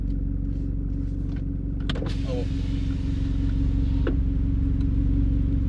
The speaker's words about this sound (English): I'm driving my mom's old car, which does not have AC.